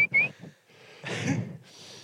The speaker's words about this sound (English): Oh, look. See that bird singing in there? What's that? What's that? Who's singing? It's a robin. You see it? Can you hear it?